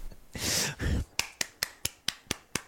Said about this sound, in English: Serious golf claps from right here on that one.